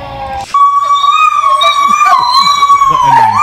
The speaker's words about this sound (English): Sounded like least intimidating dogs. Those aren't greyhounds.